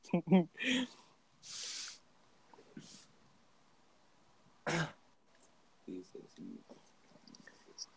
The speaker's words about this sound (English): I can hear you cough in 3D. You're gonna cough in 3D. I can hear you cough in 3D.